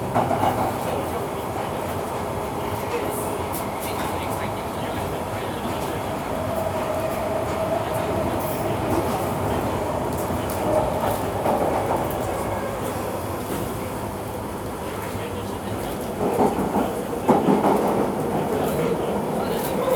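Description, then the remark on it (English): A Piccadilly line Underground train to Northfields rolls along its rails with a steady, loud rumble and rattling clatter, swelling briefly near the end, as heard from inside the carriage. “Please mind the gap between the train and the platform.”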